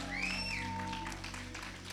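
An audience claps steadily in praise of Jesus, the dense applause sustained for the whole moment, with a high whooping cheer rising over it near the start and a low held tone underneath.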